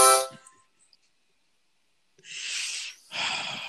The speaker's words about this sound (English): I'm gonna play a harmonica while you're trying to answer your question. Oh, you want to hear the harmonica? I got the harmonica.